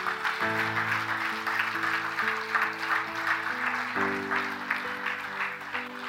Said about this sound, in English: Come on, let's give God a good praise clap up here today.